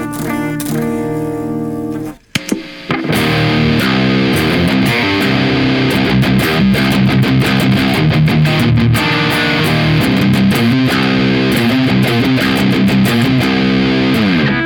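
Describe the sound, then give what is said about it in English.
Clean electric guitar through a pedal, knobs unchanged, into a Marshall cab loaded with Creamback speakers: a ringing chord, a brief gap, then steady, full-bodied playing with sustained notes, loud and alone, with no talking. “I mean, essentially, I haven't changed any of the knobs, and we just switched cabs to a Marshall loaded with creambacks, and it, just because of the response, it sounds like a totally different pedal.”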